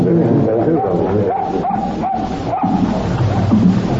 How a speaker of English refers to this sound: What's the matter with it? What are you digging for, old fellow? Whose dog is this? You belong to Mrs. Dougal.